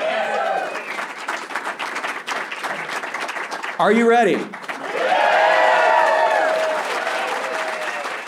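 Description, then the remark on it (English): A small live audience of only about 100 people claps steadily and cheers, with a voice shouting out to them midway before the crowd answers in a burst of excited whoops and applause, lively. “That lively crowd you just heard was actually really small, only about 100 people.”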